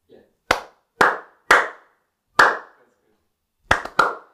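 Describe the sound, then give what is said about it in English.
Sharp hand claps used as a sync marker to note a point in a recording ring out one after another, three evenly spaced, then a pause, a single clap, and a quick final cluster of two or three. They are loud and crisp, with no talking over them. “Do you want to make a note of where we're at? Clap.”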